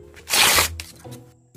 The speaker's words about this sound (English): Anything you can rip will do. Just make sure you have permission to rip it up first. Okay, now your job is to rip the piece of paper from top to bottom.